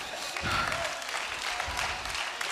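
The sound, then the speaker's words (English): An audience claps hands together for the Lord, a dense, continuous patter of many overlapping claps filling the whole stretch at a steady, fairly loud level with no talking. “Oh, give the Lord a good hand clap today.”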